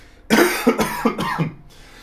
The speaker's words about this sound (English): I'm going to cough.